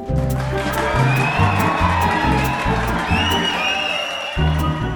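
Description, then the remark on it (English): A large crowd of fans cheers and roars continuously, with shrill whistles cutting through and a pulsing low rhythm underneath, loud and steady throughout. “And the sound of our cheering fans means it's time for listener comments.”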